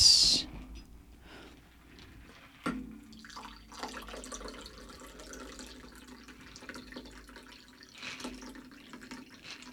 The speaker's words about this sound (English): All right, let's pour this in.